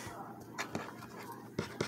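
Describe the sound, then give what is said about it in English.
A deck of cards being shuffled, with a few soft, papery riffles and light taps in short bursts, quiet, with no talking. “I don't know why I'm shuffling these so much.”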